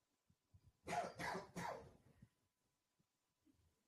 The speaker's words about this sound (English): Are you still sick? I just got a cough.